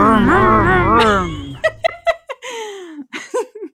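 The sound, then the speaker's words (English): A voice imitates an engine revving with a loud, rough, buzzing drone that rises and falls in pitch for about two seconds, followed by several short bursts of laughter. “I was like, before we recorded this episode, I was doing a lot of revving, and I thought we agreed that I was going to make the revving noise, but I guess you really wanted excited.”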